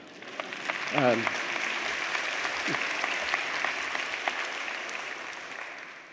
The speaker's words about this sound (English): Hope you're applauding for yourself. You guys did an amazing job. I've never seen a better crowd.